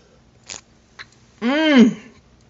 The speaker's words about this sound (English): let's raise it right now and take our first sip together. Go ahead, go in. Go take another sip. I'm taking one too.